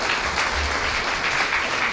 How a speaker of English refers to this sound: So well done, and give yourself a round of applause for that, because yesterday was fantastic.